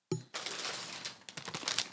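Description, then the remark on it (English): A snack chip bag crinkles and rustles for a couple of seconds, a steady crackling handled sound with a few sharper crunchy bursts near the end, and no voices. “Speaking of, I have some of your chips.”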